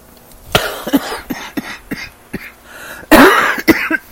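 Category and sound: human body sound, coughing fit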